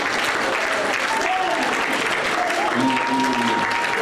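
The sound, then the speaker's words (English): A church audience claps their hands at the preacher's request to give them a hand, in steady, dense applause that stays loud and even throughout, with faint voices calling out underneath the clapping. “If you believe that, would you clap your hands right here and give them a hand?”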